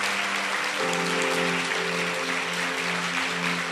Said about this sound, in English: And first of all, let's give just a big round of applause for all of these guys and gals.